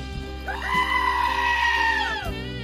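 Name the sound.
sheep bleating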